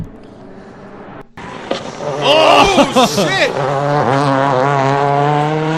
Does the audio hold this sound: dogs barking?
no